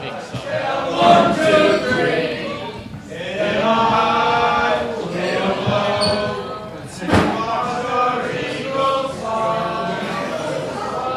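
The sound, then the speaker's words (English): A song plays steadily amid loud bar crowd noise, sustained melodic tones layered over chatter, with a sharp thump around the middle. “Oh, there's a song playing.”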